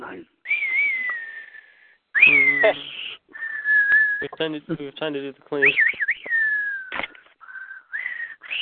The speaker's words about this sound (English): The whistling? What was that? Clint Eastwood. That was me. I'm sorry.